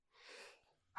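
A single loud sneeze: a breathy, rising intake of air followed by a sharp explosive burst at the end, with no talking.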